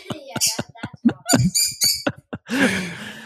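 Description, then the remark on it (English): A lovebird chirps in a rapid series of sharp, high-pitched calls and squeaks, fairly loud, ending in a harsher raspy squawk. “Yeah, that's the lovebird.”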